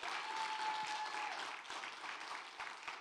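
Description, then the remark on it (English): A church audience claps steadily to honor its pastors, a dense wash of many hands at fairly even loudness throughout, with no voices standing out above the applause. “And would you guys just give a hand clap to honor your pastors today?”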